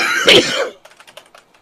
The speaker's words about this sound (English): Oh, so I coughed. Coughing echo. Stereo.